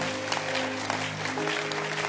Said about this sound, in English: And let's clap your hands for our pastor.